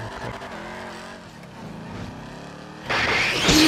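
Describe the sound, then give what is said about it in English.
A car driving sound effect: an engine hums steadily, its pitch shifting as it drives, then bursts into a louder, harsher roar with a screeching, skidding edge near the end. No voices are heard. “Hang on, we'll just do a special effect. It'll cover up the cut. Just a little drive.”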